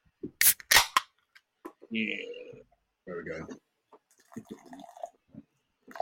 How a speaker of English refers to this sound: we're going to go on to the Charlie McDennis 2 Electric. Nice. So, I like it. Get a can. Get a tin. I have to share this one. So yeah. Open them both. Pick them up. So pour that one out for yourself,